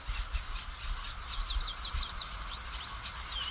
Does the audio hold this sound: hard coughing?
no